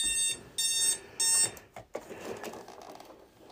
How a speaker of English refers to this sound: That's my wife's alarm. Maybe she'll get up and shut it off. I better go do that for her. So excuse me just a second. Oh, it's my son's alarm.